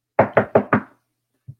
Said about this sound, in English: Can you not knock on my fucking door? I said, I'm good.